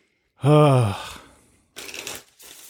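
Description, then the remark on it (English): A 2018 tarot deck being shuffled in two short, crisp riffling bursts, preceded by a brief voiced hum or sigh. No speech is heard. “Shuffle's great.”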